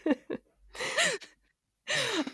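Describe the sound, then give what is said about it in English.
A sneeze: quick sharp breaths give way to two loud, hissing bursts, each carrying a voiced, falling cry, with no talking around them. “God bless you.”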